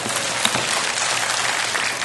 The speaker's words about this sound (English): Everyone clap for the pastor. He figured it out.